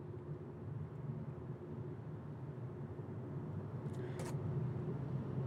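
Low, steady engine rumble of a car passing, growing slightly louder toward the end, with a couple of brief sharp clicks near the close. No one speaks.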